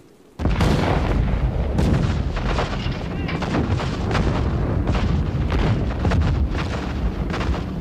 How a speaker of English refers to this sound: The Iron Throats nearby crashed forth their message of death to the Germans. From 3,000 guns, the tempest of death swept through the air. It was a wonderful sound. The flashes of guns in all directions made lightning in the dawn.